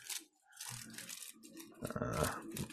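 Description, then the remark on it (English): Crisp paper rustling and crinkling as a joint is rolled, a few seconds of dry scraping and small tearing-like crackles that swell louder toward the end, with no voices. “I can still get one rolled.”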